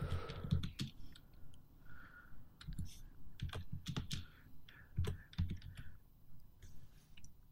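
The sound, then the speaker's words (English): Steady typing on a computer keyboard as someone Googles in the background, a run of quick irregular key clicks and clacks, with a faint low background murmur underneath. “Not so secret, we can hear you typing.”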